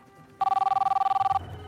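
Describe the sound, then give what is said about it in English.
An office telephone at an Illinois Bell store in Chicago rings once, a loud one-second burst of rapid, buzzy trilling at a steady mid-high pitch, then cuts off, leaving a low murmur of background noise. “Hello, Illinois Bell. How may I direct your call?”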